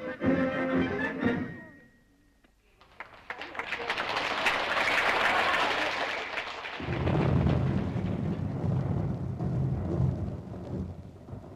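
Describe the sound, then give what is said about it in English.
A steady hiss of heavy rain sweeps in after a brief musical passage, then a deep, rolling rumble of thunder swells underneath and carries on loudly to the end; the rain and thunder end outdoor entertainment at a civic week in Blessington in July. “That part of the entertainment was brought to an end by rain and thunder”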